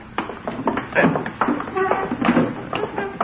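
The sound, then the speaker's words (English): An armchair being moved back against a wall scrapes and bumps across a floor in uneven drags and taps lasting a few seconds, with faint vocal sounds of effort mixed in. “Move that armchair back against the wall.”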